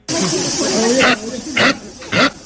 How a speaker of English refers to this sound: I found this sound of a capybara online.